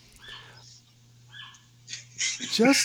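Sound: dogs barking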